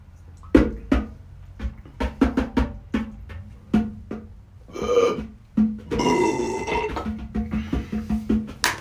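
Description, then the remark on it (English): A loud run of short, pitched fart noises, an attempt to fart the Star-Spangled Banner, strung together in a halting, tune-like rhythm, ending with a longer sputtering blast and a few more quick toots, no talking. “I tried to fart the Star Spangled Banner over here.”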